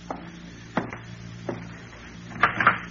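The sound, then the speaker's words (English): A door being opened for someone at the door: several sharp clicks and knocks of the latch and handle at uneven intervals, ending in a louder clatter, with a low hum underneath and no talking. “Aren't you going to open the door?”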